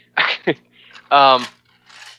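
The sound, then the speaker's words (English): A dog coughs in short, harsh bursts: two quick raspy hacks, then a louder, honking wheeze, ending with a faint breathy huff. No one talks over it. “My dog's over here coughing.”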